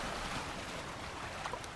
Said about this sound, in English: You arrive to white sandy beaches, a warm tropical breeze and waves lapping on the shore.